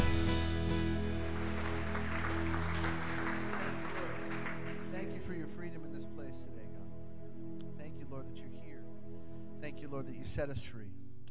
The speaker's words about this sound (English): Let's applaud him today. Amen.